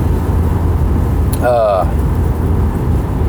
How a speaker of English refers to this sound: Anyway, I'm sure you can hear the rain. The windshield wipers is probably annoying.